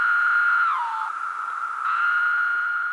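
A call of the large cicada species Magicicada septendecim: a loud, steady, high electric buzz that sags downward in pitch midway, briefly softens, then swells back to its full droning tone. No voices.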